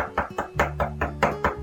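A steady series of about seven firm knocks on a door, evenly spaced in quick succession, with a low sustained hum underneath and no talking.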